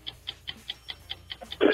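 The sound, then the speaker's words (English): A game show countdown clock, set at 45 seconds, ticks in a quick, steady rhythm, about eight crisp ticks in a row, followed by a sudden louder burst of sound at the end. “45 seconds on the clock.”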